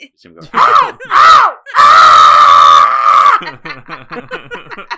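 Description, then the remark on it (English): A man imitates a comedian's furious yelling: two short rising shouts, then a long, strained, raspy scream held for over a second, followed by rapid excited talking, loud. “Your impression of Sam Kinison will be my ringtone.”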